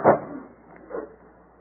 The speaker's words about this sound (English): Hey, shut that door. You're letting all the cold in.